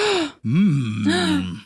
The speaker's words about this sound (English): Gasp!